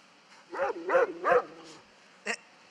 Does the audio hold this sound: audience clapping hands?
no